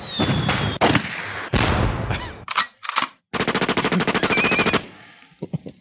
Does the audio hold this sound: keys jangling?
no